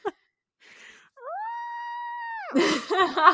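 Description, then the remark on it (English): A person lets out a high, sustained wail that breaks into a loud, ragged, raspy scream of exaggerated rage, brief, after a short breathy intake. “Screams and rage.”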